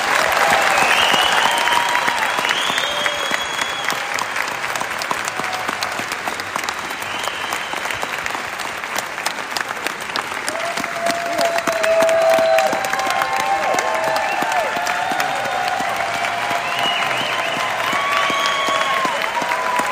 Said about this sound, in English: Thank you, Sheriff. We have one more round of applause for Sheriff Lane.